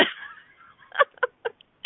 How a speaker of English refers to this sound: So, you know, if she is, she's not dying. She sounds like she's dying when she does these coughing things. It's a little disturbing.